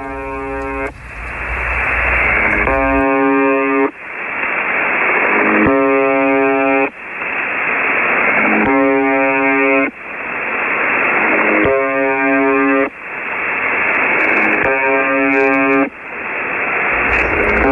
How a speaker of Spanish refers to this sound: Pues miren, este es el misterioso zumbido que se transmite desde hace más de 40 años en una emisora rusa que se denomina UVB76. Se dice que este sonido empezó a aparecer después de la Guerra Fría.